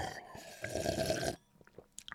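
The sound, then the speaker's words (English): A noisy slurping sip of water lasting about a second, followed by softer swallowing and wet mouth clicks in near quiet. “Right, water sip, ready?”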